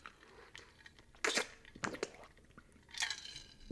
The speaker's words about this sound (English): Let me drink. Let me take a couple sips before I get going.